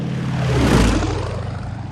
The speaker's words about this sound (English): Racing aeroplanes had been built for the purpose, capable of enormous speed, and steered by the greatest intellects of the epoch.